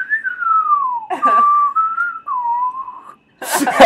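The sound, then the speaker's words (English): A person whistles a slow, sliding spaghetti-western theme tune, a few long gliding notes in a row, interrupted briefly by a breathy burst and ending in a noisy rustle. “he was whistling the Good and the Bad and the Ugly music”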